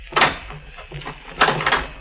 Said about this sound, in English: Oh, now listen. Lock the door. All right.